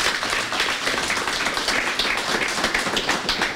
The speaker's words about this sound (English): Ladies and gentlemen, first of all, can I have a round of applause for our guests tonight, please?